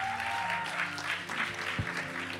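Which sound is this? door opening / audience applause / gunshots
audience applause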